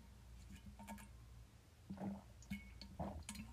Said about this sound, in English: I heard him take a sip.